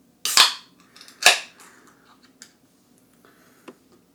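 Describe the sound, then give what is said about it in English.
A can of beer brewed with Citra and Simcoe hops being opened to pour into a glass: two sharp, loud cracks, each with a short fizzing hiss, followed by a few faint clinks and light rustling. “Let's go ahead and get this open, get it into a glass.”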